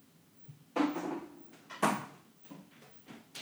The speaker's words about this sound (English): I'm walking over to the refrigerator, quickly opening and closing it, as I don't want it to get too warm in there, so the fridge turns on because that screws up my recording.